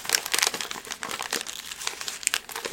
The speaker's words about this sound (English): You're just crinkling up your paper. It's the fire. It's the fire.